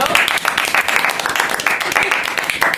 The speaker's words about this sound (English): First of all, a small round of applause, I think, for Lewis Hamilton, 5-time world champion.